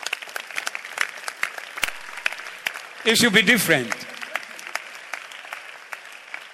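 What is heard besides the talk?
audience clapping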